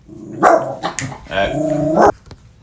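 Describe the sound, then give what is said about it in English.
A dog barks: a sharp yelp, a couple of quick short barks, then a longer drawn-out whining bark before it cuts off. “Sorry, we had a small dog emergency.”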